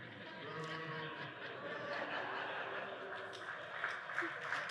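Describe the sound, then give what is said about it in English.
An audience claps steadily for several seconds, a dense patter of hands mixed with scattered chuckles and murmurs from the crowd. “That's worth a clap.”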